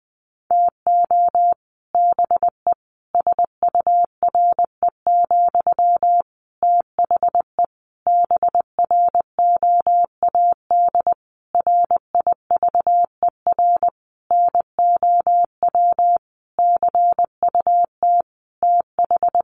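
Morse code sent at about 20 words per minute: a single steady mid-pitched beep keyed into quick dots and longer dashes, grouped with brief pauses between words, with no voices.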